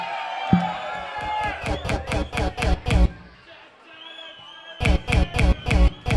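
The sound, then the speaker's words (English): A loud live concert crowd in Adelaide roars, cheering and shouting, while a steady rhythmic pounding beat cuts through. The beat drops out briefly, leaving the crowd's din, then returns. “Adelaide, if you're having a good night tonight, make some fucking noise!”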